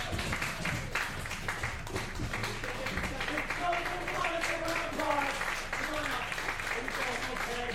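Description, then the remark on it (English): A crowd applauds steadily for a guest being brought up on stage, a dense, even patter of many hands clapping at once, with scattered voices calling out and cheering partway through. “Let's give a round of applause for our guest, everybody.”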